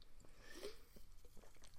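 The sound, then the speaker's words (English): A quiet sip of a soft drink mixing Coke and Fanta lemonade, a brand only available in Munich or Bavaria, with a brief slurp followed by small wet mouth and swallowing sounds, no talking. “And I'm sipping that right now.”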